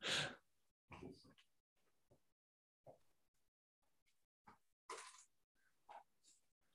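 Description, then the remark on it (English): A dog huffs and breathes in short, irregular bursts, mixed with brief shuffling and rustling as it is moved, with quiet gaps between. “sorry, I'm just gonna move my dog real quick.”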